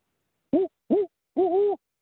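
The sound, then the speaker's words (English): A person imitates a hoot owl with their voice: two short hoots followed by a longer, wavering hoot, clear, with silence around them and no other talking. “Can you do the owl? Can you do like a hoot owl?”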